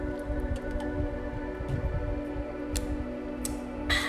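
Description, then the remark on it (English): A few short, soft sipping and slurping sounds from someone drinking lemon water, with small wet clicks near the end over a steady low background hum. No one speaks. “I'm going to take a sip of my little lemon water.”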